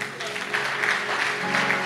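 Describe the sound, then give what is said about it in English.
An audience claps together in a steady, dense burst of applause at moderate volume, with faint murmuring voices underneath. “I thought somebody would clap for me.”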